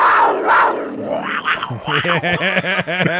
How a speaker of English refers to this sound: Like a panther or a cougar. Cougar. Catamount. Mountain lion. Cougar sound.